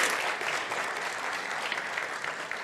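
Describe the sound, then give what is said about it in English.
A crowd claps steadily in a dense, even round of applause, bright and sustained for a few seconds with no voices standing out. “I think that deserves a round of applause, don't you?”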